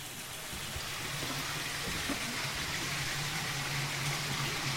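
Steady, continuous water flowing and splashing, a broad hiss with no breaks, heard fairly close and evenly loud throughout with no voices.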